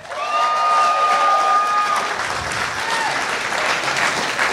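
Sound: audience applause and cheering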